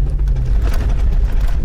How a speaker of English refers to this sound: A few miles north of town, Delbert eases his battered pickup onto a dirt road in the Chattahoochee National Forest.